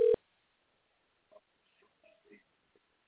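A cell phone dialing a call to a person: one short, loud electronic beep, then near-silence broken by a few faint, scattered chirps and clicks. Nobody speaks.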